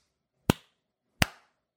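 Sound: slow clap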